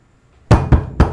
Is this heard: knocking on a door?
yes